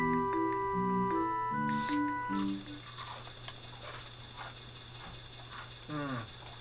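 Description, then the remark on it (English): A few electronic button beeps at changing pitches as the A button is pressed to put a cake in an oven for a timed 30 seconds, then a steady hum sets in with faint, repeated ticks clicking over it, and a brief murmur near the end. “Now, is it when I pushed A, or is it when it started making that ticking?”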